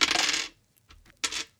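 Two six-sided damage dice rattle and clatter across a hard tabletop in a loud first roll, then a few small taps and a second short burst of tumbling, with no voices.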